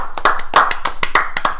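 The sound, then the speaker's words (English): Thin applause sound effect played as an Australian round of applause: a quick, fairly regular run of about a dozen sharp hand claps over a steady hiss, with no voices. “Ladies and gentlemen, a great big Australian round of applause.”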